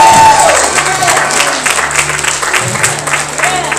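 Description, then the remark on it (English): An audience claps steadily throughout, a dense, loud wash of many hands with faint cheers and voices mixed in beneath the applause. “I see some of you here clapping.”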